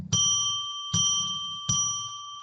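A bell is struck three times to declare sacred space, at an even, unhurried pace, each clear metallic ring sustaining and overlapping the next before the following strike, fairly loud with no voices.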